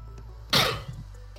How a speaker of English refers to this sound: I just sneeze for all of those of you in the beautiful world out there.